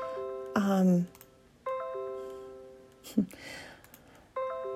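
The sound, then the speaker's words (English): Three bright electronic notification chimes from a computer running updates after being switched on ring out at irregular intervals, each a clear multi-tone ding that lingers briefly, with a short burst of voice-like sound between the second and third. “Sorry, I just turned my computer on and it's all of the updates because I haven't had a computer open in a couple days, so I apologize.”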